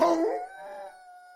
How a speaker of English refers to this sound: Lon Chaney Jr. howled at the full moon outside. Whether out of sadness or madness, I couldn't tell.